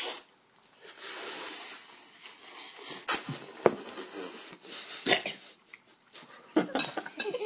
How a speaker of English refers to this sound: Now everybody just gets to listen to us enjoy noodles.